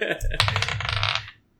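A quick clattering rattle of dice tumbling across a table, fairly loud, lasting about a second before stopping abruptly into silence.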